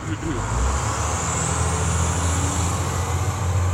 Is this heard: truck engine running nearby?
yes